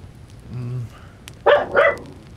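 A dog barks twice in quick succession, sharp, after a brief low murmur against a quiet background.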